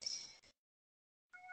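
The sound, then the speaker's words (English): A pet cat named Zelda meows twice, short high-pitched calls separated by a second of silence, fairly faint and with no one talking. “And I keep hearing someone meow, and it's really cute.”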